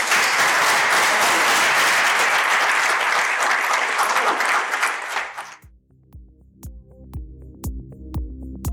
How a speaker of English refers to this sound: Okay, that's a good useless superpower. Big applause.